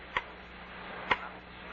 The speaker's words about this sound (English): That clock, Charlie. It's going to drive me up the wall. Oh, come on now. It's only a clock. Grandfather clock.